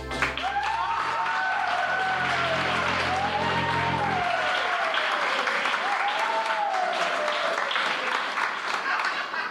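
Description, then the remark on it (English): Sustained audience applause at the close of a live audio drama performance on stage, a dense, steady clatter of many hands clapping, with faint voices and calls rising above it now and then. “Please, I've had my fill of the applauding.”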